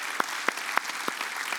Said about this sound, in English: Where are my baptism people at? Where are you at? Would you stand with me real quick? All the people getting baptized, would you clap for them? Come on.